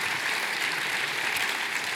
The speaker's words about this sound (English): Can you give these guys a big round of applause? Thanks.